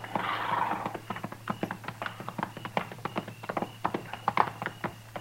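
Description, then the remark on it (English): Steady clip-clop of horse hooves on hard ground from horses ridden up to a hunter's camp as it grows almost dark, a brisk uneven rhythm of many sharp strikes from more than one animal, moderately loud, with a low hum underneath. “We just gonna ride right up to him, Mr.”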